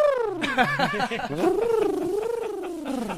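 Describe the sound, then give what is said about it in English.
A man's voice mimics a cooing pigeon, a continuous warbling coo that rises and dips in pitch for a few seconds, with no words spoken. “So all I could imagine was my buddy going down on this chick like a fucking pigeon, like.”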